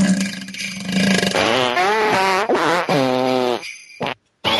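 A loud fart sound in three wobbling, sputtering bursts with a buzzy, tonal quality, followed by a brief pause and a short click before silence.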